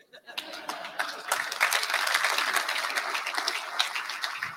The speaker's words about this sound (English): Thank you. Give him a round of applause again, folks.